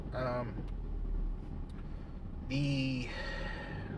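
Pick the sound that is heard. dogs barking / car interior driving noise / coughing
car interior driving noise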